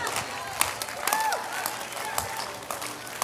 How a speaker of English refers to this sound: Some of you don't believe that. You're just clapping your hands right now.